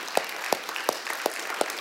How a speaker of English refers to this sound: I think some of you guys aren't standing, but that's okay. We're going to clap for you too. Thank you guys. What you do really matters.